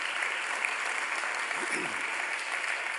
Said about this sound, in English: Can you give the Lord a great big hand clap, everybody?